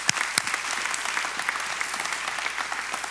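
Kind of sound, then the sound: crowd, audience clapping hands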